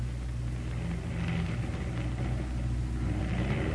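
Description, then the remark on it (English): A loud aircraft engine drones steadily with a deep, rumbling hum as the plane called the Coffin comes in for a crash landing with one motor out, holding constant throughout with no voices over it. “Somebody's coming in. Trying to, you mean?”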